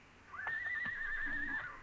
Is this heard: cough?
no